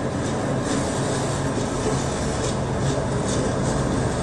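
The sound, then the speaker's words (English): A train rumbles steadily and loudly throughout a song's intro, its dense low roar carrying a faint repeating chug-like pulse as the cars roll along, with no voices present. “Chugga, chugga, chugga. The joke train to hell.”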